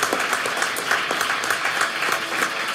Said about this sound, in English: And so thank all of you for showing up here tonight, and give yourselves a round of applause for that.